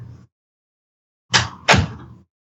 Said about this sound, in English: Oh, wait, hang on, let me close this door. It's probably making more noise than necessary.